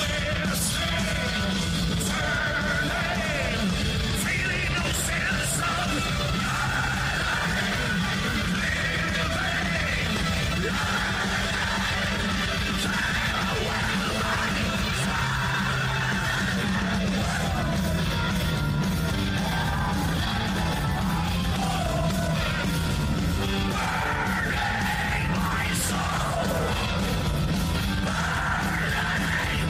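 Harsh screamed vocals ride over a dense, loud wall of distorted guitars and pounding drums in a live metal performance, with a faint crowd presence throughout the roaring chorus.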